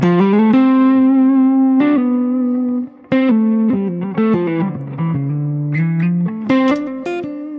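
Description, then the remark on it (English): A buzzy, distorted electric guitar with spring reverb switched on plays a melodic line of sustained notes and quick runs, loud, with harmonic-rich tone and a short gap midway. “Yeah, it's quite buzzy.”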